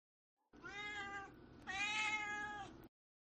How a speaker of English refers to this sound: And now it's time for Duarte's Corner, where my cat Duarte shares his opinions.